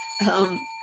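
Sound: bell ringing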